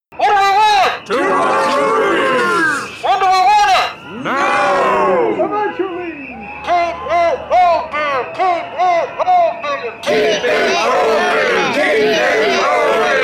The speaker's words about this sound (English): Why are we protesting outside this theater again? Don't you hear the crowd? They're going to close it down. We want to keep it open.